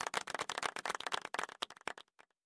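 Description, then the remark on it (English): A short burst of audience clapping, many hands at once in a dense, steady patter that thins out into a few scattered claps before stopping after about two seconds. “He deserves a second clap.”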